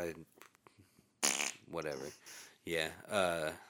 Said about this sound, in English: Insert fart noise.